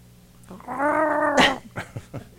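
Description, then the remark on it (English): A female cat lets out one drawn-out, warbling yowl with a rough, gargling quality, fairly loud, ending in a sharp burst followed by a few short clicks and scrapes. “It sounds like she's gargling something, which frightens me.”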